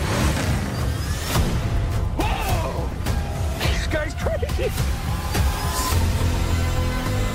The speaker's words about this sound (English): Dude, and that car reminds me of Mad Max.